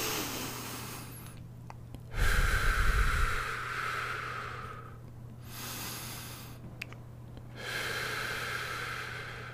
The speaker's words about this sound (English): I think we're just going to do a quick meditation and then we'll be good. How's that sound? So let's just focus on our breathing.